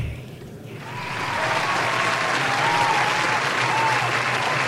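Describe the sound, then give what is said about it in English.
Canned applause from a soundboard applause button on the Staley and English Show, pressed twice, a steady wash of clapping that swells in after a brief quieter moment and holds loud and dense, with faint cheering tones mixed in. “Pressed the applause button twice, but welcome back, welcome back, welcome back, welcome back to the Staley and English Show with Coach Kurtz.”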